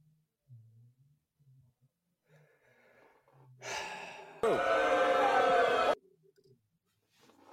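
A person catches their breath after a coughing fit, with soft breathy sounds building into a loud, raspy gasping burst, then trailing off into quiet breaths.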